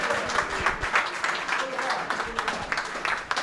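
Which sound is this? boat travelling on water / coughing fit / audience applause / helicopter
audience applause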